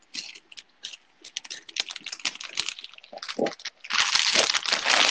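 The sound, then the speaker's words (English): Crisp crunching of Goldfish crackers being chewed, a rapid irregular run of sharp cracks that swells into a louder, denser burst of crunching near the end. “Good texture. Okay. Oh, not too much crunch.”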